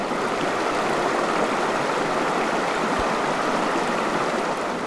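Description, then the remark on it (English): Loud, steady rush of fast-flowing water fills the scene, a dense continuous roar of a raging river churning without pause, unbroken. “A raging river...”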